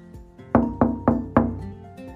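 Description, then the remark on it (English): Four firm, evenly spaced knocks on a door, fairly loud, rapping out over a soft sustained musical background. “Or it was kind of like a knock at the door.”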